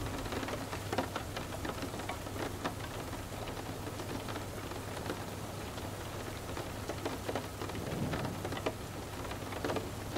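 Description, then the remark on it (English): Steady rain and wind pour down in a stormy wash of sound, with scattered sharp drops spattering and a low rumbling undertone, continuous and fairly loud throughout with no voices. “Sense the swirls of rain and wind, cleansing you into a more peaceful state.”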